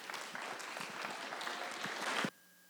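A morning church audience applauds the associate student pastor before the sermon, with dense, steady clapping for a couple of seconds, holding at an even loudness before stopping abruptly into near silence.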